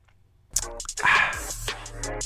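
After a short quiet pause, someone takes a sip of water from a glass: a brief wet slurp with breathy mouth sounds around it and no talking.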